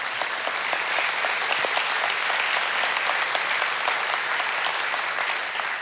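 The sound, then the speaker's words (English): Steady, sustained applause from a large audience, a dense wash of many hands clapping at an even level for several seconds with no voices standing out. “I appreciate the enthusiasm, but you did clap prematurely, all right?”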